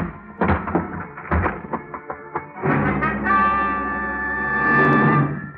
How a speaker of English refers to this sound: I didn't even bother to pick the lock. I put my shoulder to work on the door.